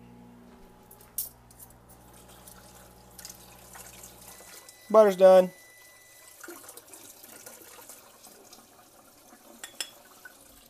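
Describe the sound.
A low appliance hum fades out, a voice speaks briefly, then faint trickling and dripping of water as 2 tablespoons of water are measured for baking, with small clicks of kitchenware, quiet.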